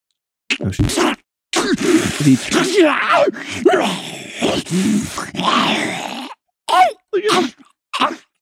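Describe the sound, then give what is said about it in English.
A man's voice imitates velociraptor barks as his best impression of a dinosaur, a string of harsh, raspy shrieks and grunts in loud bursts of varying length, ending with a few short clipped yelps separated by brief pauses. “Did you turned into really a velociraptor? Those barks were incredible.”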